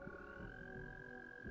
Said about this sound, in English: Well, that's not the sound effect toad that I was looking for, but okay.